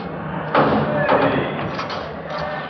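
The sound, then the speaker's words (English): A heavy door at the main jail is shut and locked: two loud clanks about half a second apart, followed by a dull rattling hum, with faint voices murmuring underneath. “They want to lock that door.”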